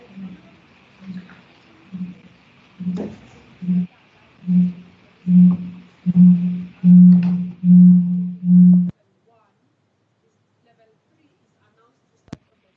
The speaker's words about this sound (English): Apologies again for the feedback noise.